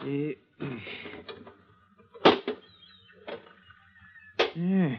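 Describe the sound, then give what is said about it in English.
A little rusted iron box, the size and shape of a brick and found in a demolished chimney, its lock rusted away, is pried open with a pinch bar: several sharp metallic cracks and scraping creaks, with a faint squeal, between short strained vocal grunts. “There was a lock there, but it's rusted away. Hand me that pinch bar.”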